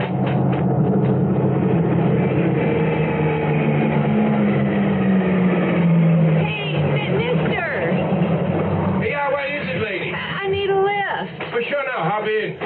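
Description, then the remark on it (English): A pickup truck's engine rumbles loudly, its pitch dropping as it slows to a stop; voices follow once the engine settles. “Okay, it's a pickup truck.”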